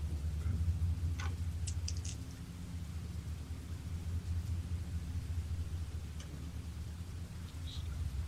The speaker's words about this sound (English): There's another strike of lightning outside that illuminates the entire room just through the cracks of the boards on the windows, causing you to jump.